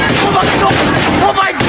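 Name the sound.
gunshots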